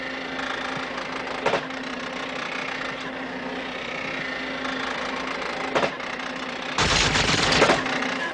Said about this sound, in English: the sound of the printer was introduced as soon as the film began, and so the noise it makes is native to the events.